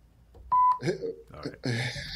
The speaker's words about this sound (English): No, you really don't say the whole fuck. You go fuck, and I'll do the beep.